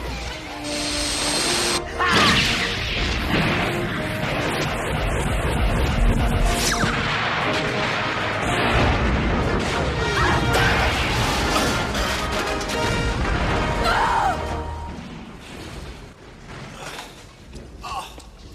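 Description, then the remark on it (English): A loud explosion erupts into a long stretch of crashing, tumbling debris and heavy rumbling that stays dense and chaotic before thinning out near the end. “The explosion must have released it, and it's loose.”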